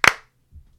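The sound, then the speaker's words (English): A single sharp, loud hand clap to work the Clapper, a clap-activated light switch, rings out with a short fading tail, followed by near silence and a faint low rumble. No one speaks. “But needless to say, I will be closing up the pre-show with a clap on, clap off, clap on, clap off the clapper.”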